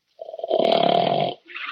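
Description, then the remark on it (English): A sleeping dog in a den snores: one long, rough, rattling breath with a droning buzz, then the start of a softer second snore. It is fairly loud, with no talking. “Oh, darn it, the dog's asleep.”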